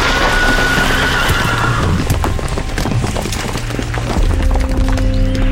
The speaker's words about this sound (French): Puis survint le drame. Son cheval poussé à toute allure s'écroula.